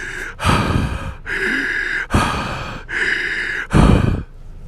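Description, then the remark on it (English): A voice imitates a man on a customer service call breathing heavily into his microphone: about five loud, rasping inhales and exhales in a steady rhythm, with no words spoken. “And then he was breathing into his mic some more.”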